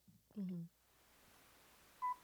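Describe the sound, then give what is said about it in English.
A car's reversing beeper sounds once near the end as the car backs up, a short, steady mid-pitched electronic tone, after a brief burst of voice at the start and a quiet stretch in between. “Whoops, sorry, there's a car backing up somewhere.”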